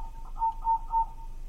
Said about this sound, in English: So now here's the same song played at 1/4 speed, and you'll be able to hear the each chirp consists of three or four wing rubs or pulses.